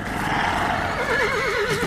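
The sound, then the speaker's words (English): Frightened horses shriek and rear madly, a loud, shrill whinny rising over a dense, agitated noise, its quavering pitch wobbling rapidly near the end. Continuous, with no voices. “Suddenly, the horses shrieked and reared madly.”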